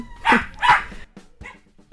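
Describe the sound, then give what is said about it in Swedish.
Two sharp, loud dog barks in quick succession, followed by a softer third bark and faint scattered noises as things quiet down. A dog barks as another dog is leaving to go home. “Varför skäller de?”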